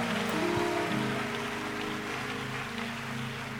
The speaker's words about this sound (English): Clap your hands for him.